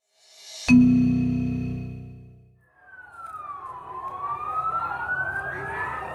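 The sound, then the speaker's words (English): An ambulance siren as the ambulance pulls up outside a girls' school in Fardis, Iran: a loud, low horn blast fades out, then a wailing siren sweeps down and climbs steadily upward with traffic-like rumble underneath. “An ambulance pulls up outside a girls' school in Fardis, Iran.”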